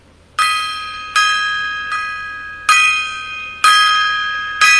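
A small gong is struck six times in a steady, slightly uneven rhythm, each bright metallic hit ringing on and overlapping the next. Loud and close, with no voices.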